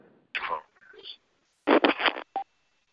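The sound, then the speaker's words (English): A voice over a phone line breaks up into short, garbled fragments that cut in and out abruptly, with dead silences between the bursts. “Your signal is very bad. You're very choppy.”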